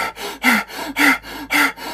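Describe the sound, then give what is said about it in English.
Quick, forceful breaths rush in and out in a steady rhythm during a speed-breathing exercise close to hyperventilation, each sharp inhale and exhale loud, about four breaths in two seconds with no talking. “Third step is speed breathing. This breathing method comes close to hyperventilation and must be trained with caution.”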